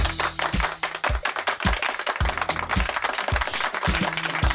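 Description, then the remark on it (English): A dense wash of clapping crowd applause, steady and fairly loud, with regular low thumps pulsing underneath throughout, and no one speaking. “Yeah, big round of applause, see?”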